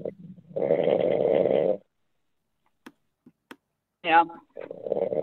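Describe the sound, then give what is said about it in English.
A man gives a loud, rasping snore lasting over a second, followed by a few faint clicks and a brief voiced sound, then muffled talking starts near the end. “I think he's snoring.”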